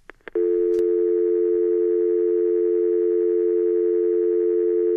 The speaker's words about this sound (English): Oh. Well, okay, maybe he probably has a broken phone or he needs a new phone. Maybe there was a storm or the lines went dead.